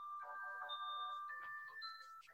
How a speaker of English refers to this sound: Getting a call. It's Christmas. The ice cream man. It's the ice cream man. I know that bell. I'm gonna turn it off here.